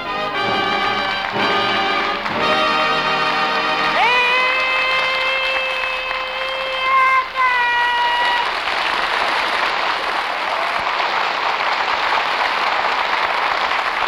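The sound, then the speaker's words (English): The studio audience of the Abbott and Costello Show, produced in Hollywood, breaks into loud, steady applause and cheering for Bud Abbott and Lou Costello over a brassy fanfare from Matty Malnick's orchestra. Once the music's held final chord ends, the clapping carries on alone. “All right, stop all that yelling.”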